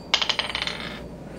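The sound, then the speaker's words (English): A die clatters across a hard tabletop in a quick run of bright, rattling clicks that tighten and fade before settling on a natural 20, with no voices. “I just rolled a natural 20.”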